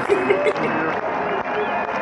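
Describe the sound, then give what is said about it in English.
A large crowd cheers in a loud, steady roar of many voices, with a few higher shouts rising above the din early on and continuing without a break. “Okay, so we're cheering you on”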